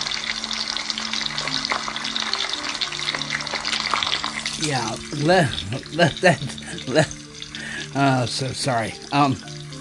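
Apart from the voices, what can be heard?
sizzling frying sound effect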